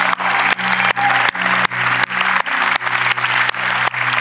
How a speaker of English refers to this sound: Not all of them can hear us, but can we just give some applause to all the servant volunteers that make this happen?